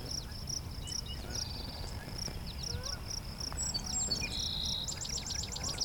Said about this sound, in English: So we get song sparrow right away.